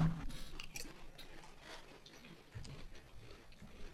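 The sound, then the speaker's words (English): Close-up chewing of spicy food with moist, crunchy mouth sounds and small clicks, continuous and irregular for several seconds, fairly quiet but right against the microphone, with no talking. “Don't chew in the mic, though.”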